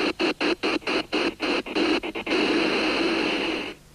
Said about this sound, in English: Mainline trains are getting closer and closer to the real thing. Now they've got electronic steam sound built in. Steam sound sets from Mainline Railways.